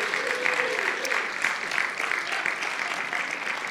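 A crowd claps and cheers steadily for a few seconds for a man being given chocolate, a dense, continuous wash of applause with occasional voices calling out above it.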